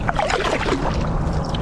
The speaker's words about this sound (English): He's kayaking to school.